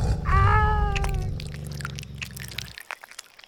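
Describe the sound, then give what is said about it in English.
A loud, drawn-out saber-tooth tiger growl: a wavering snarling tone over a deep rumble that starts strong, then fades and trails off over about three seconds, followed by a few faint ticks. “Oh no, saber-tooth tiger, quick use spear.”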